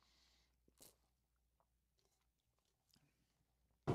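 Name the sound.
sipping water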